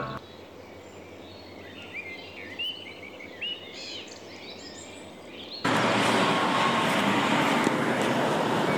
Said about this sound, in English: the high-pitched roar of Rolls-Royce Dart engines under the wings of a Fairchild F-27